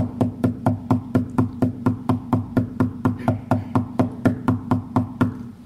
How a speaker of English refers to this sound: All the way through my talk, you're knocking like this.